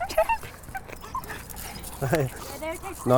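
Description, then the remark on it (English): A small male French bulldog whimpers, letting out a few short, high-pitched whines that rise and fall, with the loudest cry coming right at the end. “This is an amazing dog. Is this a Frenchie or a... He is.”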